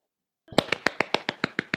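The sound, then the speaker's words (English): A rapid, even run of about nine small, light hand claps, crisp and snappy, following a brief silence. No voices are heard. “Little clap.”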